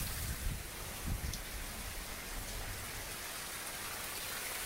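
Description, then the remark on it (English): Steady, dense hiss of heavy thunderstorm rain with a low splashing rumble of water pouring off a roof, continuous and fairly loud throughout, no voices. “This is crazy how much rain is pouring off the roof.”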